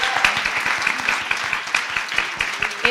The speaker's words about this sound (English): We're just about to wrap up. But I did want to, first of all, a huge round of applause for these pitchers. Right?